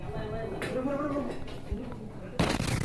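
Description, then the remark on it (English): Muffled voices and background noise give way to a sudden loud explosive blast near the end, a broad rumbling boom that stays harsh and noisy afterward, from a videotaped explosion set off by a pledge during hell week. “So, bro, roll of quarters, explosives, go over there, blow up that, and then videotape it, show it to the brothers.”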